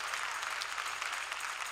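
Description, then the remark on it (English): A crowd claps their hands to give praise to God, the dense patter of many hands blending into a continuous wash of applause that stays even and moderately loud throughout. “Come on, clap your hands and give praise to God.”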